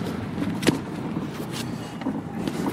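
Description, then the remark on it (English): A car drives through Auckland traffic, its steady low engine rumble filling the scene, broken by a few brief knocks and rattles. No one speaks. “Bloody Auckland traffic.”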